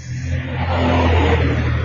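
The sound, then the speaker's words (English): A loud car rumbles past, its deep engine drone swelling and holding strong over about two seconds, with no voices. “That wasn't a cab. That was a loud car passing.”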